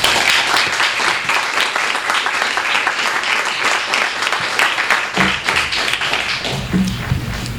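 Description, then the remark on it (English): An audience at an event welcomes Tom Bissell with steady applause, a dense wash of many hands clapping at an even, loud level for several seconds, with a few low thumps near the end. “So please help me welcome first Tom Bissell.”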